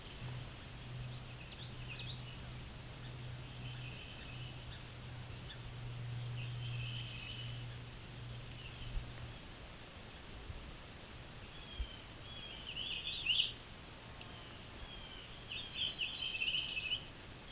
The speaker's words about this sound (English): Yeah, we've got a Nashville warbler.